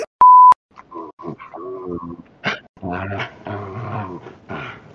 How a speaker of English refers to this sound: Like, your dog has joined the fucking podcast at this point.